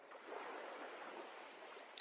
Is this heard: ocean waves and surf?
yes